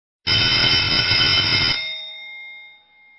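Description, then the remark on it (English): A loud electric school bell rings continuously for about a second and a half, a harsh metallic clatter, then cuts off and leaves a fading tonal hum. Nobody speaks. “It would be cool if we could do like a bell ringing sound because it's about school.”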